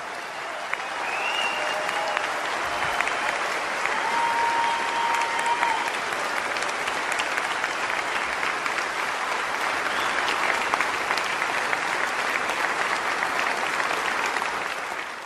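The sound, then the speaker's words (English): Sustained applause from a large audience at a commemoration, honouring Pearl Harbor survivors and World War II veterans: a steady dense clatter of many hands clapping at an even loudness for about fifteen seconds, with a few faint whistles and cheers near the start. “A grateful nation applauds you today.”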